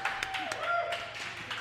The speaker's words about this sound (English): Everyone make some noise. Give yourselves a round of applause.